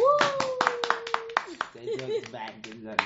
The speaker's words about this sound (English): First of all, let's clap for ourselves.